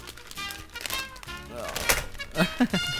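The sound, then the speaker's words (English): A keyboard is set down on a surface, a short run of clattery plastic knocks ending in a few soft thunks, with a voice murmuring underneath. “Put my keyboard on this.”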